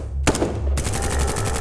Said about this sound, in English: A cacophony of cries and gunfire erupted in the lobby.